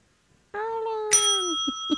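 A doorbell rings, a warm tone followed by a bright, metallic chime that lingers, then two short knocks. No one speaks.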